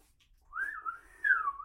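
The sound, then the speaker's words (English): A person trying to flag down a waiter whistles one short, wavering note that dips and rises in pitch, growing louder toward the end. It is fairly quiet, with no talking. “I can't whistle loud enough.”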